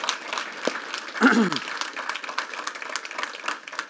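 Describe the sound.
Audience applause for a newly baptized woman: a steady, dense crackle of many hands clapping for the whole stretch, with a brief voice rising over it early on.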